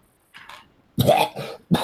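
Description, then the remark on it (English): A person coughs and sputters from billowing smoke in a rough burst: a small throaty hack first, then three loud, harsh coughs in quick succession, with no speech. “They start to cough and sputter.”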